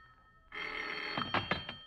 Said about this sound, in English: It seems like hours later when the phone bell cuts through the darkness like a knife.